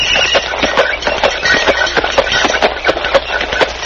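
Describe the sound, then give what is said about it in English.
Horse hooves clip-clop at a steady trotting pace, pulling a rattling horse-drawn milk wagon delivering milk in 1896, with a dense hollow clatter, on a muffled old recording with no voices. “In the year 1896, milk was delivered in a horse-drawn milk wagon.”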